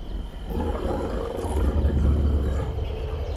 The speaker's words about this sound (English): See those two wolves that are the size of grizzly bears? Those are night wolves.